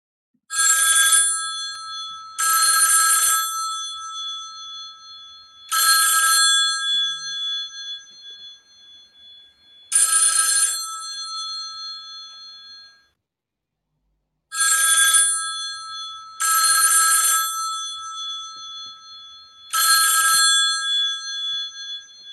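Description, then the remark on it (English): A telephone rings repeatedly with incoming calls to the Teachers Talk Radio show, seven bright trilling bursts spaced a couple of seconds apart, loud with no voices, then fades out after the last ring. “An excess of ringing once again.”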